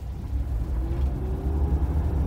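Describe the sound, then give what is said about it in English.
A car engine hums steadily while driving along the road to Shreveport, a continuous low rumble with a faint rising tone, and no voices. “The journey to Shreveport was not long, but the Lomaxes kept stopping the car”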